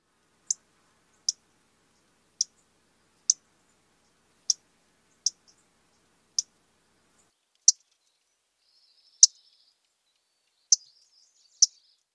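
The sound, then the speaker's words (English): A MacGillivray's warbler gives sharp, clipped 'mac' call notes, about eleven of them spaced roughly a second apart, each a brief bright chip standing out clearly against a silent background. “I think it sounds a bit like it's saying its nickname, Mac, Mac.”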